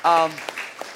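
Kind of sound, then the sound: crowd, audience applause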